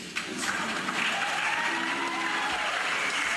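A crowd applauds steadily throughout, a dense, continuous wash of many hands clapping at once, fairly loud and sustained, with no one speaking over it.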